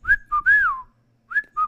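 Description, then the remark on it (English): A person whistles an imitation of a whippoorwill call: a short, clear phrase of bright, sliding notes, then a pause and a shorter repeat of the phrase. No talking. “My number 3 is a whippoorwill.”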